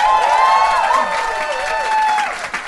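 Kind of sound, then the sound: crowd, audience round of applause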